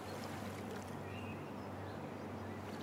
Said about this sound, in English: You hear the water in the lake slowly coming to shore.